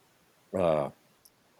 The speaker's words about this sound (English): I hear the Dogs of San Miguel crying in the background.